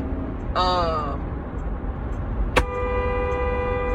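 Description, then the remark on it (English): A truck rumbles low and steady as it pulls out into traffic in front of moving vehicles, with a brief falling horn-like tone early on, then a sharp knock and a long, sustained horn blast. “Fucking jerk, I hate when trucks do stupid shit like pull out in front of moving vehicles, and they goddamn can't even get up to that dang on speed to flow with the flow of traffic.”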